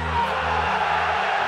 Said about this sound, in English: On the count of three, I want everyone in this arena to scream at the top of your lungs, fuck the Mayweathers!